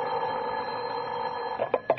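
A telephone rings at about 11 o'clock at night with a steady, buzzing electric tone that fills nearly two seconds, clear, broken by a couple of short sharp knocks right at the end.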